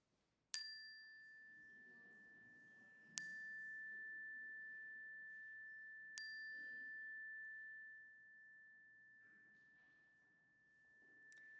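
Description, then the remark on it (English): A chime is struck several times during a prayer, at slow, uneven intervals, each ring sustaining a clear bright tone that lingers, with faint murmuring voices quietly underneath as people speak names aloud. “I invite you to call to mind the names that are in your hearts, the people and places, anyone, anywhere you have a prayer for, and speak them aloud as the chime rings so that we can hold them with you.”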